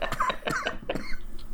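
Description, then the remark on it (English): A short run of harsh coughs, three or four quick bursts in a row, loud and dry, with no talking around them. “Hopefully by our next episode, I'll stop having to edit out coughs.”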